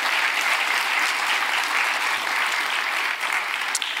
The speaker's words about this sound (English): Come on, give the Lord a hand clap, a shout, an amen.